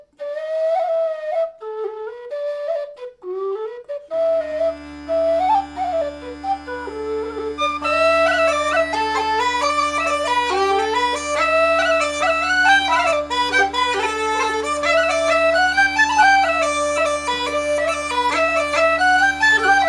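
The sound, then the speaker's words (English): A traditional tune played on pipes: a short solo melody opens, then steady droning tones come in beneath a lively, ornamented melody, loud throughout with no talking. “the weekly show where I explore the likely repertoire of 18th and early 19th century bagpipers using historic music collections, written for bagpipes or not, and played on Illan pipes, Highland pipes, and whistles. Let's hear some tunes.”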